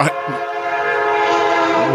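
train horn passing nearby

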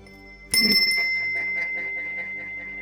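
meditation bell being rung

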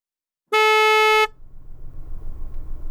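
car horn honking

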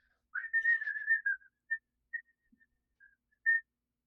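whistle being blown

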